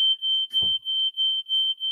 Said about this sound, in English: Okay, so the fire alarm going off in the kitchen is not the most sexy thing to happen.